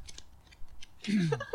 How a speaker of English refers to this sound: I am shuffling. I am shuffling because I don't want to know whose cards they are from anyone else, but I want to guess.